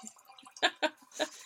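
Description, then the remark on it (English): Vodka splashing into a glass in a few short bursts, with faint background noise in between and no talking. “I poured entirely too much vodka into this glass.”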